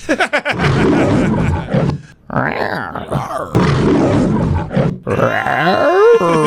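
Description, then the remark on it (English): A man imitates a lion's roar by saying the word "roar", letting out several loud, growling vocal bursts separated by short pauses, the last one wavering upward in pitch. “We get to the lions. Oh, he doesn't actually roar. He just kind of says, roar.”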